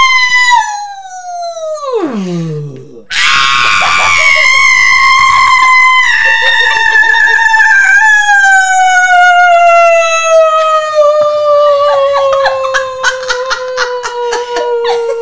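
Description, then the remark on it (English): A single voice does a siren as a vocal warm-up to find its range: it swoops down from high to low, then holds a loud, bright tone that slowly slides downward for over ten seconds, with no talking. “And then to get your range, you're gonna do a siren. So you gotta go as loud, you go. And then all the way down.”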